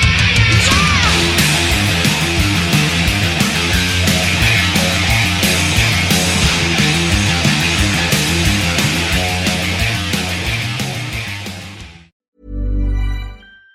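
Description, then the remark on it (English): Loud, full-band music with a steady driving beat and dense layered instruments plays for about twelve seconds, then cuts off, followed by a brief low sustained chord. “Cue music.”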